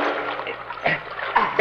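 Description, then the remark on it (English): Water sloshes and splashes as someone reaches down under the water to free a person tied with ropes, a soft continuous wash broken by a few brighter splashes toward the end. No one speaks. “We'll reach down under the water a little.”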